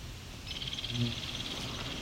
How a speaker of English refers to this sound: A couple goldfinch flying over.